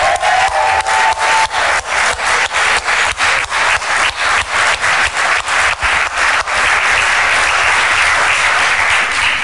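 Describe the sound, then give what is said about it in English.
Loud audience applause with a steady, rhythmic clapping beat that lasts several seconds, then blurs into a continuous wash of applause. No one speaks. “let's give him a clap.”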